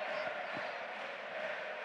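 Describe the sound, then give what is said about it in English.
A football crowd cheers in a dense, steady roar of many voices. The broad wash of noise holds at an even, fairly loud level for the whole two seconds with no clear peaks. “That's got the crowd excited.”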